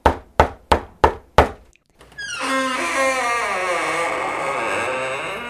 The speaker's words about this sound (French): Dimanche, pendant qu'elle se reposait sur son canapé, une autre personne toqua à la porte.